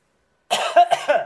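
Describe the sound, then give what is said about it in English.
A burst of harsh, wet coughing, a few rapid hacks in a row, fairly loud after a moment of silence, with no talking alongside; the person coughs with the mouth open. “Why are you coughing with your mouth open?”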